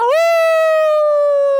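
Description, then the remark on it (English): A person imitates a wolf howl: one loud, sustained cry that swoops upward at the start, then holds a steady, bright pitch for over a second before fading slightly. “There's got to be like a wolf or something, you know, something cool.”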